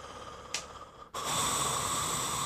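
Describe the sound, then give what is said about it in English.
A voice imitates the heavy, raspy breathing of a masked killer: a brief sharp intake, a short pause, then a long, loud, hissing exhale that fills the rest of the moment. “And then the last part is the heavy breathing.”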